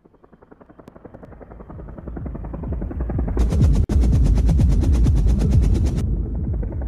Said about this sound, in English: So we have the Sage getting flown in on the helicopter.